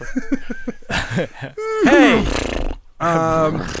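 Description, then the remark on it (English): A person's voice imitates a horse, starting with short rhythmic snorting bursts, then rising into a loud, wavering whinny with a final pitched neigh, alone. “I make a lot of horse noises at the house.”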